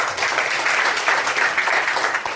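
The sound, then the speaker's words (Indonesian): A crowd applauds at the start of a question time, with steady, dense hand clapping that fills the whole stretch at a fairly loud, even level, with no one speaking over it. “Ini adalah waktunya untuk bertanya. Tepuk tangan dong.”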